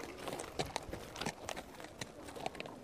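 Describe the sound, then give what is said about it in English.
A cart horse's hooves clip-clop at an unhurried walking pace, a series of sharp, hollow knocks with slightly uneven spacing, not loud, with no voices. “Here, horsey, come on.”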